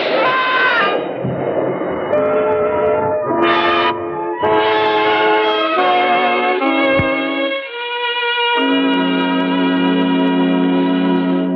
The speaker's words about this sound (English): I know what you're waiting for. You're waiting for the elevated train. You're waiting for the elevated train to drown out the shot.